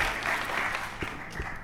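A crowd applauds in a steady, dense patter of clapping that holds at an even level throughout, with a few sharper claps standing out near the end.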